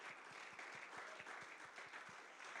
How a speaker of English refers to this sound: You clap right now. Wake up, clap.